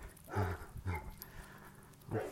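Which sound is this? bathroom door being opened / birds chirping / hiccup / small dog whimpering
small dog whimpering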